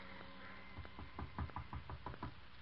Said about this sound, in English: Her father knocks at the door.